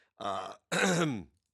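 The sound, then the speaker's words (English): Two rasping bursts of coughing and throat clearing in quick succession, the second longer and dropping in pitch as it trails off, with no talking around them. “excuse me, still struggling with that coughing,”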